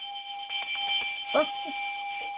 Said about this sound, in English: So I usually reserve this for first-time callers, but since you're coming back after a long time, you get the welcome back bell.